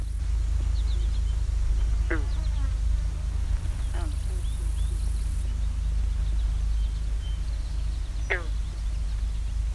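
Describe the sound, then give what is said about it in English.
Three short, rising squealing calls from a lone female wood duck on a pond, spaced a few seconds apart, over steady low rumbling background noise with faint chirps from other birds. “It's just a lone female wood duck here in the pond.”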